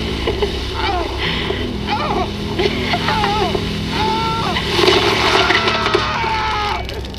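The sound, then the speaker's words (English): A wet spray of water spat out and splattering onto a person's face and arm, a brief hissing burst amid steady background noise, with indistinct voices and chirpy vocal sounds around it. “You spit on my arm.”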